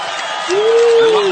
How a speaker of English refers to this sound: I love that applause. I expect that from my three children every time I come home.